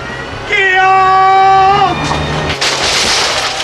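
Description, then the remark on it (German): A sustained high whining screech gives way to a loud crunching crash as the plastic casing of Kaluschke's moped shatters, followed by a burst of noisy, splintering clatter. “Die Plastikverkleidung von Kaluschkes Mofa zersplitterte wie ein Eiszapfen, der auf den Gehsteig fällt.”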